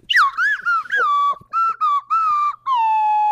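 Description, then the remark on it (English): A slide whistle plays a slow little tune, about seven breathy notes separated by brief gaps, each swooping and bending in pitch, ending on a long held tone. “Where's the slide whistle?”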